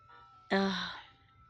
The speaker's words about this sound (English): this ice cream truck. You guys know I hate it.